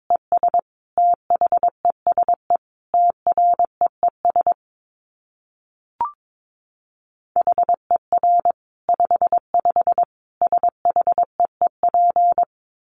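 Morse code at 22 words per minute: a steady mid-pitched tone keyed in rapid short and long beeps, two runs of characters split by a pause holding a single faint click.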